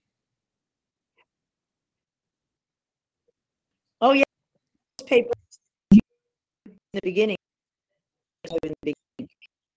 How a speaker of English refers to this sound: Your connection got really choppy there for a sec.